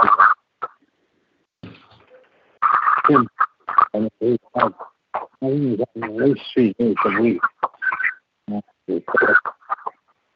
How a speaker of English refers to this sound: You got a lot of feedback on your phone, like echo or something. Maybe it's, I got a speakerphone. Yeah, take that speakerphone off.